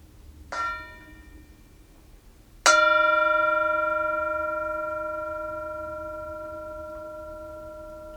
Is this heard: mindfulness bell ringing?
yes